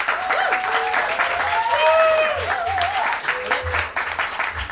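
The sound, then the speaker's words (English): An audience claps steadily for several seconds, a dense, sustained wash of applause with scattered whistles and cheers rising above it, applauding to vote for the winner of a contest. “If you believe that the winner tonight was Tom, applaud now.”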